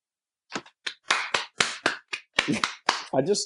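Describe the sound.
A short burst of slow, uneven, sarcastic handclaps, roughly a dozen sharp claps at irregular intervals, with a brief voice sound mixed in at the very end.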